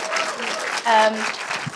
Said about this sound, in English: Can I say, first of all, before I thank the rest of the crew, my wonderful guests, Sophia Myles, Sally Phillips, Ronni Ancona, thank you very, very much indeed. Round of applause.